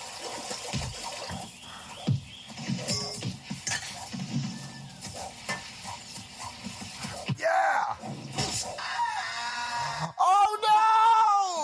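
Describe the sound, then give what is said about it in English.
Muffled voices and rushing background noise give way to a loud, wavering death scream from a movie character, followed by a second drawn-out anguished cry near the end. “Death scream was amazing!”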